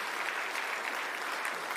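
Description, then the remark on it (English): Sustained audience clapping after a prayer, applauding brave people: a dense, steady wash of many hands applauding at once with no pauses, moderately loud throughout and no voices standing out. “If you're sitting down, can you clap these brave, amazing people?”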